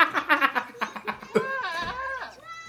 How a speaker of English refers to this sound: Well, that sounds like goats, but I hope that laughing isn't because they're starting to copulate with them. That's a goat screaming there.